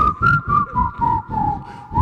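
A steady whistled melody holds a clear tone that dips slightly and rises at the end, carried over a rhythmic, pulsing musical backing from a song recording.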